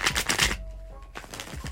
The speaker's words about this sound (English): Ooh, that was a crisp shuffle.